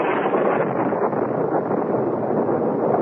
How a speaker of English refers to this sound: With the fury of a demon, a tropical storm broke, and huge waves lashed at the shore below us.